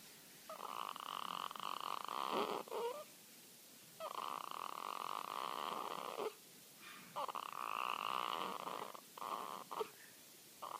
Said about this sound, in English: I'm not going to lie to you, newborns definitely sound a little bit like gremlins. You hear that? Yeah, that is actually the sound of a real newborn sleeping.